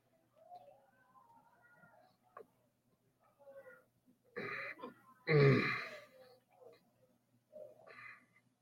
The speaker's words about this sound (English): Oh my God. Fucking hiccups done snuck up on me.